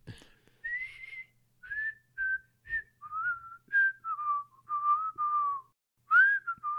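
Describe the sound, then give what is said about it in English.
A person whistles the cheerful melody of a song alone, a string of clear notes in short phrases that rise and fall, with brief pauses between them. “I don't know why I'm doing the whistle part.”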